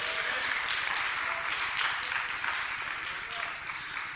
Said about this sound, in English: I asked y'all earlier in the worship experience, how many of y'all were glad? And some of y'all got to clapping.